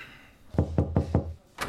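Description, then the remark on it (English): Three firm, evenly spaced knocks on a door, fairly loud, followed by a brief sharper click; no voices. “You knocked.”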